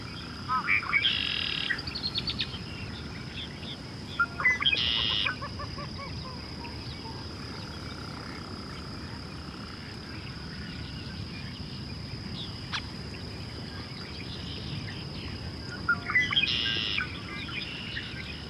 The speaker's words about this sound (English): That low, strained groan is another call from the least bittern.